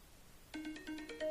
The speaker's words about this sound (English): Oh, you need to change that timer, man. That was weak. It's a new phone. Yeah. Yeah, I'm blaming the new phone.